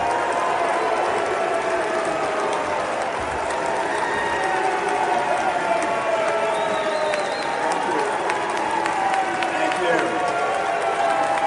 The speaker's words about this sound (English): He's saying thank you. They continue to boo, ladies and gentlemen. This lasted for like 45 seconds. It did not end.